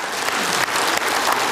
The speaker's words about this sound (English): Yeah, clap for that, yeah.